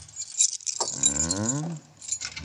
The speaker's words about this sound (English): I guess you'll have to help me with this door. I can't get it open. Let me see it. Well, of course you can, silly. It's locked. Where are those keys we found on the desk? Here they are.